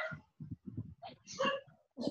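A dog barks several times in an irregular run of short, rough yelps, fairly quiet, with brief pauses between bursts, as someone passes by.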